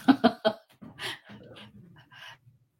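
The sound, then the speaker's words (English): A dog barks three times in quick succession, loud, followed by a couple of seconds of softer huffing, snuffling and whiny breaths. “The dog's starting to act up.”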